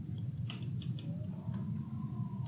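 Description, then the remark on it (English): A steady, blustery wind gust rumbles low and loud throughout, on a windy day too poor for bees to fly, with a few faint, brief high chirps and squeaks scattered over it and no voices. “I don't know if you can hear that gust of wind, but yeah, so this is not a good bee flying day, to say the least.”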